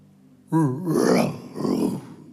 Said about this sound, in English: It was a roar that was broken, but it was a roar nonetheless. I kid you not, the moment the lion roared, it was even a broken roar, but it was a roar.